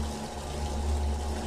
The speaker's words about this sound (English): The drain is plugged and the water won't stop pouring down on me. The water rises to my ankles, to my waist, then over my head.